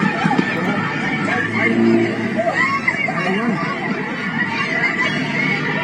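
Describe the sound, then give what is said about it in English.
A dense crowd hubbub from a large group of teenagers in downtown Chicago: many overlapping voices, steady and fairly loud throughout, with no single speaker standing out, occasional shouts rising briefly above the constant murmur. “That's their crowd, not mine.”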